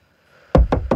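In a film scene, three quick, sharp raps on the window of a car Rose is sitting in, loud and in rapid succession after a brief quiet moment, with no one speaking.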